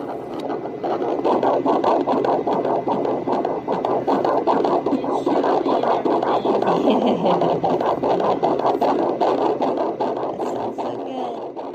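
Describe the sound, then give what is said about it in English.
A fetal heartbeat heard on a Doppler monitor at an OB appointment: a fast, steady galloping whoosh of rhythmic pulses over loud, constant static hiss, with no talking. “So the next morning I went to my OB and she listened to the heartbeat with the Doppler.”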